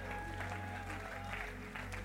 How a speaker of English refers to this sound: Now give the Lord a big clap. Somebody give him a big clap. Give him a big clap right here.